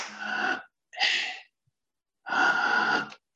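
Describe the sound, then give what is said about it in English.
Three loud deep breaths in a steady rhythm, demonstrated at the slow first-minute pace of a breathing exercise, each a broad airy rush lasting about half a second to a second, separated by brief silences, with no talking. “So letting go is just letting go and breathing in, but not too slow. The first minute we do it at this pace.”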